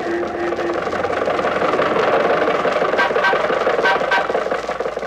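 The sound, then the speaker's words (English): The engine of Jack Benny's old Maxwell car sputters and chugs steadily as it cruises along Hollywood Boulevard, holding up traffic. It is loud, with irregular coughing bursts over a continuous rattling rumble and no voices. “let us leave the studio and journey two blocks north to Hollywood Boulevard, where we find Jack Benny's Maxwell cruising along and holding up traffic as usual.”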